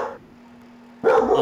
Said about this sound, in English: Sorry, I got a barking dog.